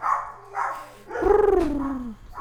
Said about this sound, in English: That the dog's going off. It's somebody getting home.